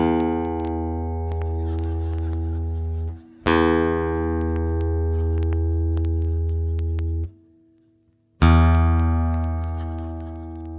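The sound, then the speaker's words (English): Guitar strings plucked for tuning: three loud, sharp attacks, each ringing out in a long, steady sustained tone, with a brief gap before the last pluck. No one speaks. “When I was young and I didn't know how to tune guitars properly, I would call my cousin”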